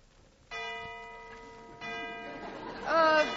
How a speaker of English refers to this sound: There's the last bell.